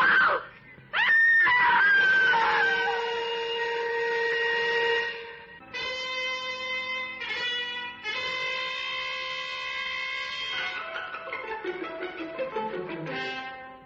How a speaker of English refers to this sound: A woman screamed and cried for help on the Wayfield Common, but there was no one within a mile to hear her screams.